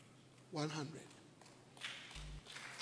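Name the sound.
audience clapping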